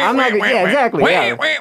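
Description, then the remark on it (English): A person imitates a duck with their own voice, as in calling ducks and geese by mouth, making three rapid, nasal quacking calls in a row, loud, with harmonic, warbling tones and brief pauses between them. “Calling ducks and geese with your mouth, like only your own vocal.”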